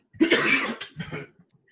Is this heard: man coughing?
yes